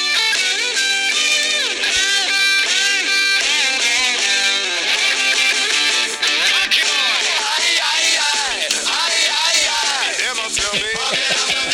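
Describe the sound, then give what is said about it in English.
A loud ska punk song blares continuously, with shouted, yelling vocals over a dense, driving band sound that stays at full volume for the whole stretch. “during the lashing that I got, this is literally the song that was playing while I was had to stare at them in the face and not laugh.”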